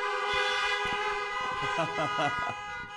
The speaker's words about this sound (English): Now, those of you on this side, I want you to honk your horn at these folks. And these folks over here, honk your horn at these folks. Yeah, go ahead.